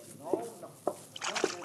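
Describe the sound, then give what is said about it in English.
Water splashes and sloshes in a few short bursts, fairly loud, as Pancho pours water on Cisco's head in a jail, mixed with brief vocal exclamations and gasps around it. “But now Pancho with water on Cisco's head.”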